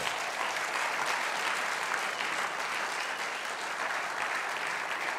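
Steady applause from an audience, clapping for the dads and grandfathers present, lasts several seconds, a dense, even patter of many hands clapping at once with no voices standing out.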